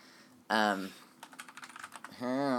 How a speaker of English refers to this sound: I'm sorry. I've got a mechanical keyboard. It's super, super fucking loud.